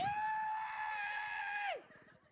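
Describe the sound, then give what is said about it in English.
A person imitates a loud, high-pitched screaming squeal, one sustained shrill cry held steady for nearly two seconds before it drops off abruptly. “That's literally, I was like, this high-pitched screaming squeal.”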